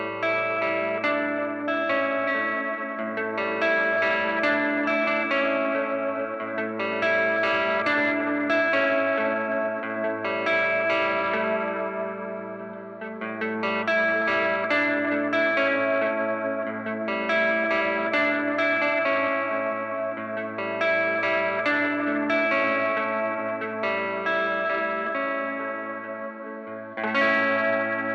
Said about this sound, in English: Let's listen to one last example using the black panel model. I'm going to use the Telecaster and the neck pickup. And I added a longer delay with some of the spring reverb built into the El Capi stand.